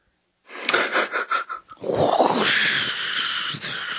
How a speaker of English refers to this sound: Sound of a toilet flushing here.